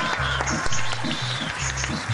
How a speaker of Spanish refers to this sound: Recibamos con un fuerte aplauso al señor Antonio Sanín